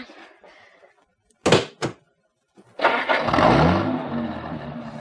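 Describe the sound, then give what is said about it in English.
Two sharp thunks like car doors shutting, a pause, then a Cadillac engine cranks and catches, settling into a steady, loud rumbling idle with a slight rev. “Like a Cadillac with keys.”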